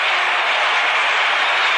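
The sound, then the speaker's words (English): A large baseball stadium crowd of fans applauds the St. Louis Cardinals' left fielder during the series, a steady, dense wash of clapping that holds at an even, fairly loud level throughout, with no voices standing out. “But Danny Little, left fielder for the Cardinals, gets a nice round of applause by the fans, and he has deserved it.”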